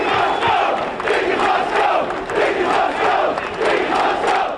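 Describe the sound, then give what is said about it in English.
Thousands of rioting off-duty police officers shouting and yelling together as they storm through barricades, run on top of cars and charge the stairs of City Hall, a dense, continuous roar of many voices that swells and surges in loud waves without pause. “Thousands of cops stormed through the barricades and ran on top of cars as they charged the stairs of City Hall.”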